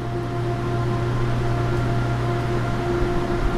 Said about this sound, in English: So we have two channels. We typically only use one unless we get high flows. Then we'll put two. Yeah, this is UV disinfection. Water runs through these banks of lights.